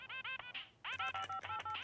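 Telephone keypad buttons are pressed in a quick run while the phone plays a song, each press giving a short electronic beep mixed over the bright, tinny melody; there is no dial tone, so no number is dialed. There is no talking.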